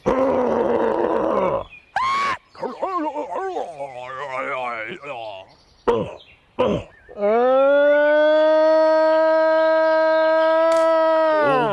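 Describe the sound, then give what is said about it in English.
A man's voice imitates a Bigfoot (Sasquatch) mating call, with rough grunts and warbling, wavering wails building into one long, loud, sustained howl held for several seconds. “We contracted the most renowned Bigfoot mating caller in the world.”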